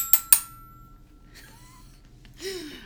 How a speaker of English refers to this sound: That was my daughter's xylophone. Oh. I stole one of my child's toys to bring to record on this podcast.